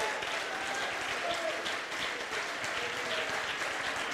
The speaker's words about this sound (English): Oh, clap your hands, all you people, and shout. Go ahead and shout. The Lord is here.